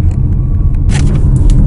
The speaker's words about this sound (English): The petrol engine's kicked in now and it's got some welly. Not too much, I don't think it'll be too juicy on the fuel.